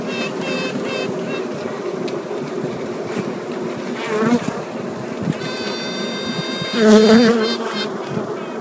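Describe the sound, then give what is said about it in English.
Honeybee queens still in their cells quacking in answer to another queen's tooting: short, nasal, duck-honk-like bursts rise over a steady droning hive buzz, one around the middle and a louder one near the end, with a thin high tone lingering. “They respond with a noise called quacking. It sounds like a duck honk.”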